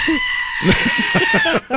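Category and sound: animal, goat bleating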